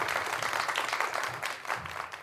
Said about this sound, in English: Congratulations. Wait, I think that's a clapping noise. Let's just let it run out.